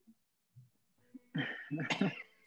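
A person coughs close up: a short cluster of harsh, loud coughs after a moment of quiet breathing, with no speech.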